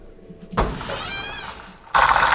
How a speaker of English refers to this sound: Excuse me, I farted.